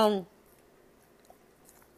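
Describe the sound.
A brief voiced sound at the start, then soft chewing of food with faint wet mouth clicks in otherwise quiet surroundings.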